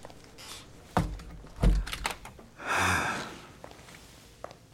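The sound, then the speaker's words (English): A door is closed: two dull thuds, then a short breathy swoosh, with faint shuffling afterward and no one speaking. “Do you mind closing the door?”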